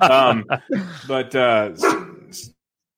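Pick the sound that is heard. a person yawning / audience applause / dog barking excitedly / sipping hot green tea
dog barking excitedly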